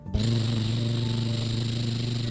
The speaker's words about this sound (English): The loud engine in this tractor was very noisy.